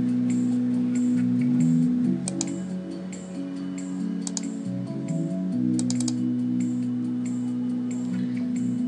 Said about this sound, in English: And clicking, clicking. This clicking has a purpose. I am posting the times and the dates of the classes that are coming up into the future